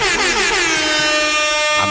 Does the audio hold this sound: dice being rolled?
no